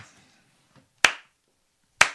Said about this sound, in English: I'm trying to figure out what I was waiting for the slow clap to start.